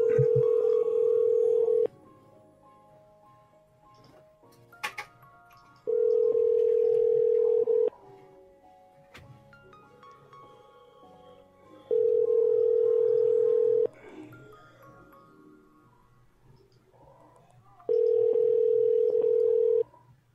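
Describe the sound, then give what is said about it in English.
A telephone line tone sounds in four steady two-second bursts separated by longer silent gaps, clear, with a faint click or two between them and no one talking. “The number you have called is not assigned.”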